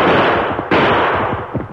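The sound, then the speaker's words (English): A sudden gunshot, fired at a rider on horseback on a trail in the darkness, cracks out midway through a loud, dense wash of rumbling noise that continues steadily afterward; no one speaks. “Grab your gun.”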